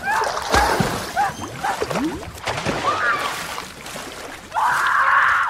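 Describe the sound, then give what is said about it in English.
A woman in a played clip screams as she is eaten by a dog, amid chaotic splashing and thrashing noises, her loud cries breaking out early, then returning as a sustained, piercing shriek near the end. “Why is she screaming?”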